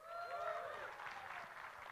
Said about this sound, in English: Give a cheer.